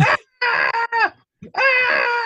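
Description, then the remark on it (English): A person's voice imitates a primal scream, letting out several loud, strained, wordless howls in quick bursts with short breaks between them, intense. “Was it some kind of weird Yanoff primal scream therapy? Scream out your suckiness!”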